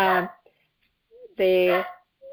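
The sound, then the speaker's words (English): A dog barks twice, loud, with a short pause between the barks and a faint whine trailing in the gaps. “There's my dog.”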